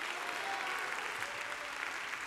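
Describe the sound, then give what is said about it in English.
A large crowd applauds at a worship service, dense and steady hand clapping in praise filling the whole stretch with a continuous wash of sound, no voices standing out. “Now, I want you to see your hand clap like arrows.”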